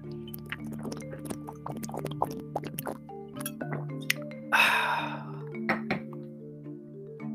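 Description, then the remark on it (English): Someone drinking water: a string of wet clicks, plops and gulps, then a short breathy rush of air midway, all over a steady low humming tone. “Hold on a sec, I need to drink some water.”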